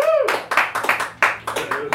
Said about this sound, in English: So I'll make you clap because it's a podcast. So, and I'm going to include Splinter in this just to round things out. So by show of applause, whose favorite turtle is Raphael, the one with the red mask?